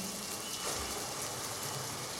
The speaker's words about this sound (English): Can you feel the rain just falling down? Can you feel the rain just falling down?